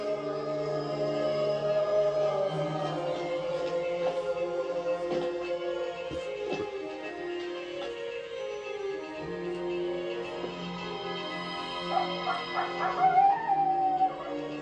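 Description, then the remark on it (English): A dog across the street whimpers and whines in long, wavering tones for the whole stretch, broken by a few short yips and barks, rising louder near the end. No one speaks. “Sounds like our dog across the street.”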